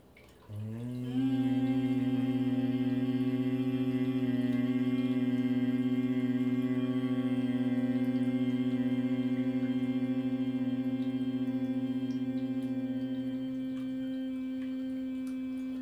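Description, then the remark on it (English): A single voice hums one low, steady note without a break for about fourteen seconds, rich and fading slightly near the end, as a meditation exercise done while breathing out. “Continue humming sound, looking deep inside the forehead into the dark space.”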